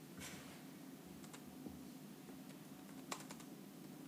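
Quiet typing on a computer keyboard at work, a loose, irregular run of soft clicks with a few sharper keystrokes, over a steady low background hum and no talking.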